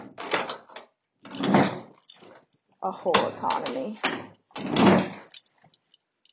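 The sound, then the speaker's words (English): A skateboard being smashed around: several loud, irregular wooden bangs and clattering crashes in bursts, with a short spoken phrase at the start. “That's me smashing my skateboard around, thinking about all the dead people who died for no reason this year.”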